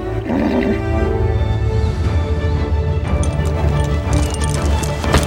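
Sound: horse hooves clip-clopping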